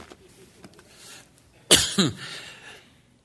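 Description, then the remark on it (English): Two sharp coughs in quick succession, the first harsher and louder, the second slightly weaker, following a moment of faint rustling and shuffling. “When I start coughing.”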